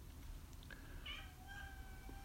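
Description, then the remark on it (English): A cat named Monkey, up in a balcony, meows in a few drawn-out, tonal cries, heard alone over a steady low background hum, moderately quiet. “Oh, monkey's up in the balcony meowing.”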